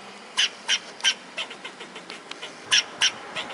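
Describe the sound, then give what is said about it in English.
A fox squirrel gives alarm barks in a rapid, steady series of short, sharp chirping calls, clear, with a few softer calls between the louder ones and no talking. “Like the fox squirrel's barks.”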